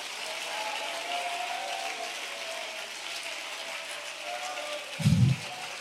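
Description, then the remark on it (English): An audience claps their hands during preaching in a steady, dense wash of applause that holds at an even loudness throughout, with a brief low thump near the end. “Everybody clap those hands and lift up your voice.”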